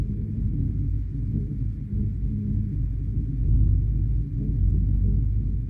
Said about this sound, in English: So with their permission, I brought a recording and see if you can hear the pulse. It's a vibration, it's a resonance, but as you listen, it mirrors our own heartbeat.